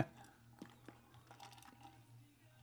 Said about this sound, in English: Let me get a sip of water for this one.